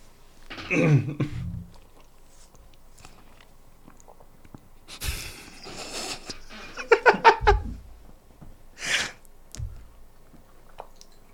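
A low, throaty burp rumbles out near the start, followed by scattered wet mouth noises, chewing-like squelches and a quick rapid series of clicky gulps, with no talking.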